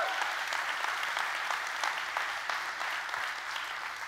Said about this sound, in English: Come on, let's give Jesus a good hand clap.